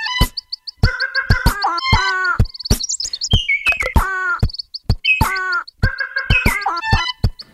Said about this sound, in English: He finishes up with the Madagascar long-eared owl, the red-fronted quaw, and the Sayumanga sunbird.